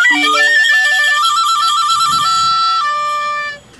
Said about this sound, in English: And he gets sleigh bells and recorder.